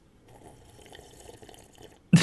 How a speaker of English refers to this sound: I went ahead and sipped my water after that, yeah.